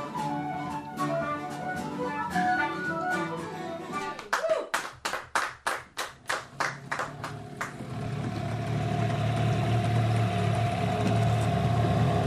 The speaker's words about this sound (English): So, sitting on a small open boat with an outboard motor, just taking us out across the waters on the western edge of Strangford Lough